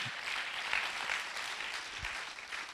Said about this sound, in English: Because moments create momentum. Come on, clap your hands real big in this house.